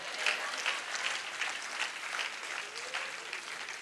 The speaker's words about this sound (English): Clap for Jackie Chan.